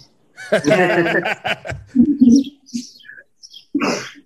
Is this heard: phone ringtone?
no